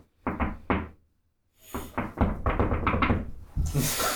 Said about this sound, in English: I think Maru's just going to stroll up and do the secret knock